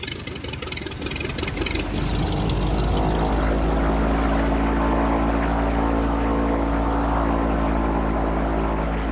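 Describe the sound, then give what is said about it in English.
A Merlin 3C turboprop airplane's engines and propellers drone loudly and steadily, building over the first couple of seconds into a continuous, rumbling hum with a whining edge. “We buy a Merlin 3C, which is a plane that has the self-sufficiency to make the Venezuela-Mexico route without layovers, a turboprop.”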